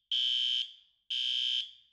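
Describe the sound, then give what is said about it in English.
Two loud, shrill electronic alarm beeps from a load monitoring system, going off when loads reach a set trigger level, each about half a second long with a short ringing tail, sounding about a second apart with nothing else audible. “So when the loads get up to a certain level, there's an alarm goes off.”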